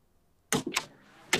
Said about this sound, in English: The door closed.